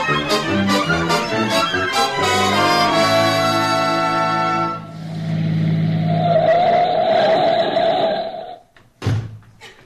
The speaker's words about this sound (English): let's hurry. We'll jump in the car and be there in a few minutes.